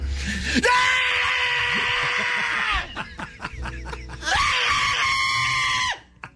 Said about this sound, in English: looks funny when he yells